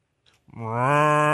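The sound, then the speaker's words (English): A person imitates a cow with a single loud, sustained moo, a steady low harmonic drone that swells in and holds to the end, preceded by a faint breath. “Let's hear your best cow sound.”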